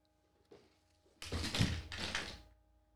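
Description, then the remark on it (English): A dropped drink cup hits the floor with a soft knock, then a loud thudding clatter and rustle that lasts about a second before fading out. No one speaks. “I dropped my damn drink.”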